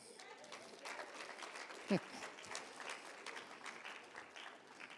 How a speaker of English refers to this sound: Don't clap. It encourages me.